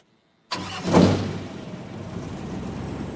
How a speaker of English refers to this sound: The boat's engine started. No, no. Vale was not driving this tug out to sea.